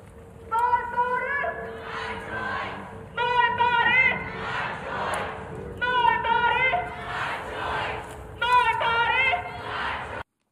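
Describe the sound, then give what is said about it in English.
A crowd of protesters in front of Justice Alito's house chants the slogan "My body, my choice" in unison, repeating it in four loud, rhythmic bursts with brief pauses between, over a steady low hum. “What they're screaming there in front of Alito's house.”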